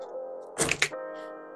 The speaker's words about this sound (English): I don't like how many dice that sounded like.